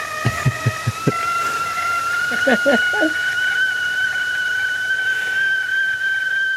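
A whistling kettle sounds a steady, piercing high tone with faint overtones, its pitch creeping slightly upward, while a few soft thumps and a brief murmur occur early on.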